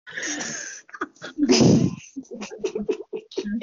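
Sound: coughing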